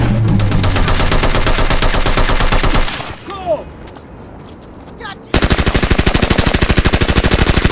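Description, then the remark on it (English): A belt-fed machine gun fires two long, rapid bursts of loud, evenly spaced shots, separated by a short pause where a man says a couple of words; the shooter is carrying another grown man on his back. “It's actually a pretty hard workout to shoot a belt fed machine gun while another grown man's on your back.”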